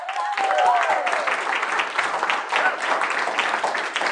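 A crowd applauds steadily for several seconds, a dense, crackling wash of many hands clapping at once, with a brief tonal vocal sound rising above it near the start.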